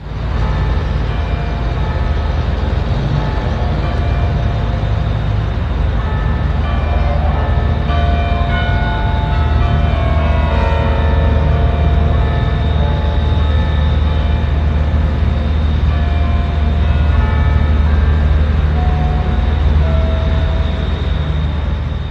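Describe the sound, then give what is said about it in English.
The carillon bells of the Peace Tower on Parliament Hill ring out the Jeopardy theme as a slow melody, with overlapping ringing tones stepping through different pitches over a steady, loud low rumble. No one speaks. “But what they did yesterday at Parliament Hill, and we'll play it for you as the bells on Parliament Hill at the Peace Tower rang to the theme of Jeopardy last night.”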